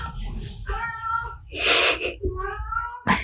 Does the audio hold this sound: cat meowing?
yes